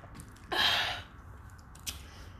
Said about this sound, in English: If I could advertise this drink I'm drinking, the lemonade, like, fire. I would advertise. Matter of fact, I'm an advertised collapse, so I'm probably not saying it right, but that's the best lemonade ever.